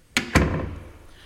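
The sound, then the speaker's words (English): A door swings shut with a quick latch click followed by a solid thud, its low rumble fading out over the next second. No one speaks. “Close the door.”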